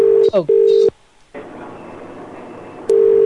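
Ringback tone on a phone line while calling to order takeaway: a steady, mid-pitched double burst, then a hissy pause of about two seconds before the next burst starts, sounding clear as if through a handset.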